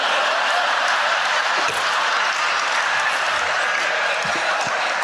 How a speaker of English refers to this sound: This is from Andrew Kenna, who's, this is motherfuckers that clap on a plane when it lands.